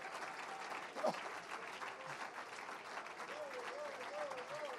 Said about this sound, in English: I wish somebody would clap their hands if you hear what I'm preaching.